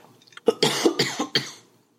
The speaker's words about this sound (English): Water also helps you if you're coughing.